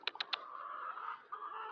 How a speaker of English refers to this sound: Oh, there's my chickens. Chicky, chicky, chickies.